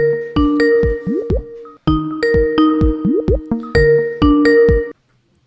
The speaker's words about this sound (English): Is that ringing? Are we on?